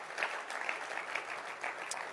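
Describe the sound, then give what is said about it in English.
A church audience claps steadily for new trainee shepherds standing up, a dense, continuous patter of many hands with small swells in intensity, no voices standing out over it. “Keep clapping your hands for them.”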